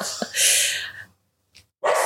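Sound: dog barking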